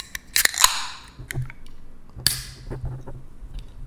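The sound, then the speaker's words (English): A beer bottle cap pops off with a sharp metallic click and a rush of fizzing hiss that fades, then a second sharp pop and hiss follows about two seconds later. “So we're gonna crack them open.”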